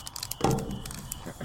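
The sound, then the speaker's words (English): Paper crinkles and rustles in a series of quick, scratchy bursts, with a brief murmur of a voice partway through. “Here, bro, can you open this paper? I actually can't, dude.”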